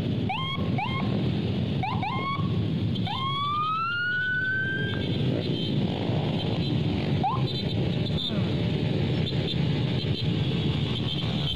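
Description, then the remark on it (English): A police car's siren gives a few short yelps and one long rising wail as it speeds past, followed by a constant loud roar of about 200 motorbike engines speeding past. “Just like that, where there's like a cop car speeding past, followed by no fewer than about 200 motorbikes,”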